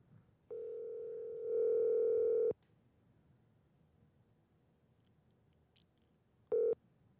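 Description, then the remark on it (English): A phone ringback tone from an outgoing call that goes unanswered to voicemail purrs steadily for about two seconds, then after a pause of quiet background a second ring briefly starts before cutting off. It is clear and fairly loud, with no talking. “He would still answer his phone.”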